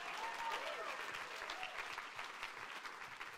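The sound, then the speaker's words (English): A church audience breaks into steady applause as a clap of praise to God, a dense, continuous patter of many hands clapping at an even loudness, with a few faint voices and cheers mixed in. “Come on, if you believe that, give God a clap of praise right now.”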